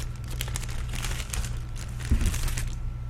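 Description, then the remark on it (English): Someone unwraps a large piece of gum from a vending machine, the wrapper giving off a steady run of soft, crisp crinkles and rustles over a low background hum, with no talking. “This is a piece of gum.”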